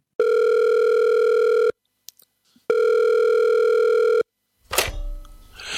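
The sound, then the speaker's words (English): An incoming-call tone sounds twice, each a steady, even electronic buzz lasting about a second and a half with a short gap between, followed by a burst of noisy static. “I seem to be getting a call.”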